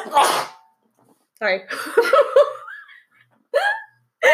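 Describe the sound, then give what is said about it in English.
A single sharp, loud sneeze bursts out, followed by a quick apology and other people talking. “Bless you.”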